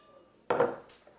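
Whiskey being poured into glasses: a single brief, bright burst of glassy clinking and splashing that rises suddenly and fades within a fraction of a second, with no talking.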